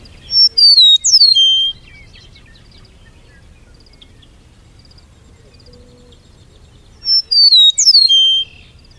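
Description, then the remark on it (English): A meadowlark sings two clear, flute-like phrases of slurred descending whistles, one at the start and one near the end, separated by several seconds of quiet background. “This meadowlark is a very nice singer. This is what it sounds like.”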